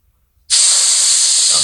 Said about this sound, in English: So I'm going to give a good sniff on my schnauzer.